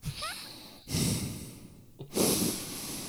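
Two loud breaths rush straight into the microphone, each a broad noisy burst of air, separated by a quieter pause with soft background hiss.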